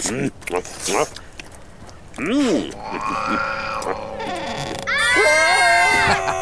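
A person in the middle of the woods lets out a series of loud, high-pitched, strained vocal cries, ending in a sustained wavering scream over the last second or so.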